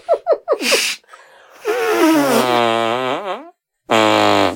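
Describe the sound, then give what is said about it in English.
Hand-and-armpit fart noises: a few quick sputtering pops, then a long wavering squelch that bends in pitch, a brief pause, and one more sustained blat. No talking. “There are so few opportunities in my life to arm fart.”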